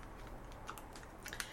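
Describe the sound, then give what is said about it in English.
A bottle cap is pried off a bottle of clear golden ale: a few small scraping clicks build to one sharp metallic snap near the end, fairly quiet, with no talking. “Anyway, you know, I'm going to pop this top.”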